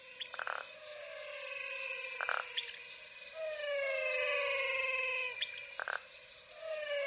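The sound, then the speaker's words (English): A chorus of frogs calling in the Pantanal, with long, overlapping whistle-like tones that slide slowly in pitch, broken by a few short, sharp clicking bursts. The calls are steady, with no voices. “The Singing Frogs of the Pantanal”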